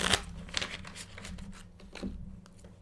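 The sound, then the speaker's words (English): Tarot cards being shuffled for a weekly self-care reading, a string of crisp papery riffles and soft slaps repeating irregularly over a few seconds, with no one speaking. “I'm going to shuffle.”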